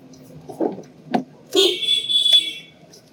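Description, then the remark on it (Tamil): A large approaching vehicle's horn blares loudly and steadily for about a second on a road, preceded by a couple of short knocks over a low road rumble. “வண்டி வண்டி ஏதோ பெரிய வண்டி வரமா சவுண்ட் குத்த பத்தியா? நானே பயந்துட்டேன்.”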